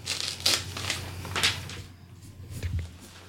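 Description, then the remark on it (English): Sheets of grid paper rustle and shuffle as they are fetched for sketching, in a few short, crisp bursts of handling noise, with quieter rummaging between them over a steady low background hum. “I was just getting a... grid paper so I can sketch.”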